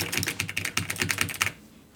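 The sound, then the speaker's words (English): Rapid computer keyboard typing and mouse clicking with crisp clicks, a dense run of keystrokes for about a second and a half before stopping into quiet. “Like, I could just hear your keyboard and your mouse was like, and like things were done.”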